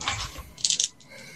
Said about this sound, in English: Oh God! I just threw one off the table. Just gonna replace it. Bad dice.